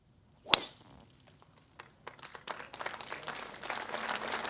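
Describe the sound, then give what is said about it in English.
A single sharp, crisp crack of Richard Bland's golf ball struck off the first tee at Royal St George's, opening the Open Championship, followed by a brief hush and then applause from a crowd that swells steadily and keeps going. “Richard Bland, a fairy tale story in its own right in 2021, placed his ball on the first tee at Royal St George's and settled himself.”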